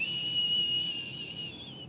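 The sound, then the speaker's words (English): A tea kettle on a stove, heating water, whistles with one steady, shrill high note over a bed of steamy hiss, holding for about two seconds before easing off slightly at the end. “Now, people don't use tea kettles much anymore, although I did buy one the other day.”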